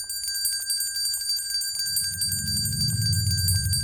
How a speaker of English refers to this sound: Listen. Do you hear it? I hear the bell